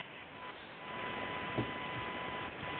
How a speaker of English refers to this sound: Steve, you've got a problem with your connection because it's just humming